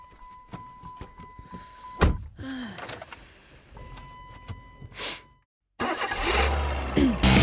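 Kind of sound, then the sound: vehicle, car engine starting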